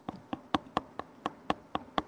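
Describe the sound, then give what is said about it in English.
A basketball being dribbled quickly by someone practising basketball in his room: about nine sharp, evenly spaced bounces in just over two seconds, each a short thump with a slight ring, steady in rhythm and moderately loud, with no talking. “He's been dribbling a ball in his room.”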